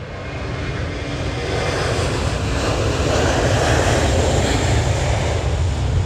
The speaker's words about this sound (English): I'm sorry. I'm sorry. I'm at the airport. I'm watching planes.